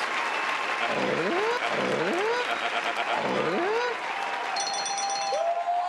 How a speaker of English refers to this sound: round of applause. Give it to him. Yes.